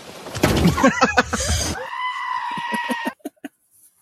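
A goat lets out a loud, harsh, wavering bleat that stretches into a longer, steadier cry, followed by a few short clicks as it fades.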